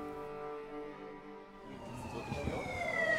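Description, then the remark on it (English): An ambulance siren wails steadily in the old city of Jerusalem, its tone holding and then sweeping in pitch, with a low rumble of city traffic beneath it and growing slightly louder toward the end. “Can you hear the sirens, the ambulance?”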